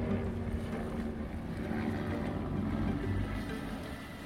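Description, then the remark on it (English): A helicopter drones steadily as it performs a maneuver to say hello to someone down below, a loud low engine rumble with rushing wind noise that holds fairly even throughout, no voices. “I can do this helicopter maneuver to say hello to you!”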